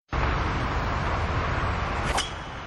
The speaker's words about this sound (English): See, that's the golf sound.